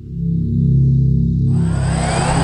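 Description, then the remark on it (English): A Hoover vacuum cleaner used by housekeeping drones with a steady, loud low motor hum, then about halfway through a broad rushing hiss joins in and holds continuously. No one speaks. “Housekeeping of coming with the Hoover.”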